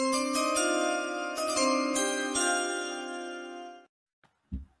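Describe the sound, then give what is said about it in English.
A bright metallic bell rings out loud, struck repeatedly in a rapid clanging run that sustains for several seconds before stopping abruptly, followed by a couple of faint knocks. “It's a long bell.”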